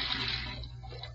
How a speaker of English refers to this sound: I emptied the rest of the poison in the sink, and I let the water run for a minute.